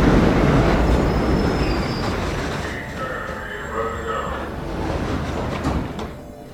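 subway train running

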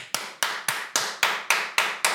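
loud hand clapping

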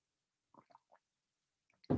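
sipping coffee

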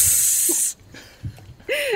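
sizzling hiss sound effect

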